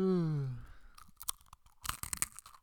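Crunchy chewing of a fortune cookie right up against the microphone, a few loud crisp bites and munches in irregular bursts after a brief low hum at the start.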